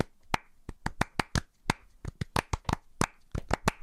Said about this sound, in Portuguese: Eu sei bater palmas, sei. Toda a gente sabe bater palmas. Sim. Agora, bater palmas sei no contratempo. Acompanhar, sei bater palmas e até algumas músicas minhas, as palmas são minhas. Que eu as capto.